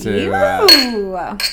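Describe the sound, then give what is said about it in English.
Two bright glass clinks ring out a moment apart, as if drinking glasses are tapped together in a toast, with voices sounding around them. “What the hell, guys? Cheers. Cheers.”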